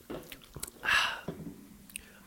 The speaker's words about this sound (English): A second taste isn't, a second sip isn't as good as the first, but I'll go with it.